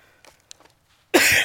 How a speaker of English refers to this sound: All right. Well, excuse me, I'm fighting a little bit of a cough this morning.